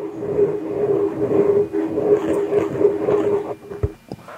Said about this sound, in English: I'm going to rub the microphone. Isn't it relaxing?